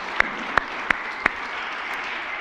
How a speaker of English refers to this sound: And so yeah, you can clap. You can clap.